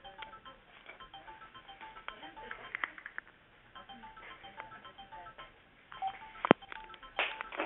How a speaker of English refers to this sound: okay, hold on a second. Let me get this phone here.